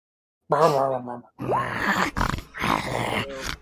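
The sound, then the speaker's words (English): A person makes a close, loud string of growling and groaning noises with their voice, imitating the character Anubis growling as it moves up, in several rough, drawn-out bursts with short breaks between them. “All right, Anubis will move up, growling all the while.”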